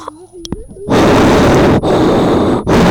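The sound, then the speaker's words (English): Heavy breathing blasts straight into a microphone while walking around the block: three loud, harsh rushes of noise with short gaps between them, following a brief murmur of voice at the start. “You can hear me breathing.”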